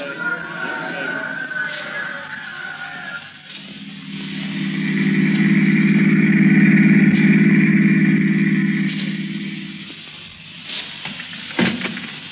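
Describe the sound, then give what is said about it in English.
A car engine hums steadily, building to a louder, rumbling drone in the middle before easing off again, with faint background voices and clatter near the start and end. “Come on, let's get out of this crowd. I've got the car outside.”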